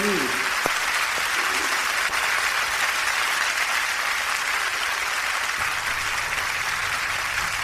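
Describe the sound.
Sustained applause from an audience, a dense steady wash of clapping that holds at an even, fairly loud level for several seconds, with a faint voice briefly underneath near the start.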